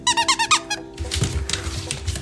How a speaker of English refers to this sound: A few years ago, we got our poodle Bichon mix named Frank, what we thought was a pretty baller toy. It's a little bottle of whiskey that squeaks. It even has what looks like a Jack Daniels label. When you look closer, it says Bark Daniels.